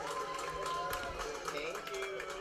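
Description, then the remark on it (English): A crowd applauding the Imagineers at the official launch of a ride as riders come off the ride's train, a steady wash of dense clapping mixed with chatter and voices, holding at a fairly even loudness throughout the short stretch. “They're applauding all the Imagineers who were there to officially launch the ride.”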